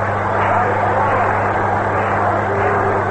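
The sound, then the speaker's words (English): A stadium crowd at a baseball All-Star game applauds New York Giants manager Mel Ott coming up to pinch hit, a dense, steady roar of clapping and cheering that holds at full strength for the whole clip, with a low electrical hum running underneath. “Ott is getting a great hand from the crowd.”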